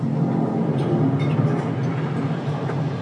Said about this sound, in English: Sounds like the bowing of the metal or something. Just really nice ambient sounds all around the room during this, you know, dialogue heavy scene.